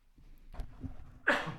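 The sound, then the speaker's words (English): A single sneeze: a soft, breathy intake builds for about a second, then bursts into a sharp, loud, hissing release that quickly fades. No one speaks. “sorry about that. That's all right. Bless you.”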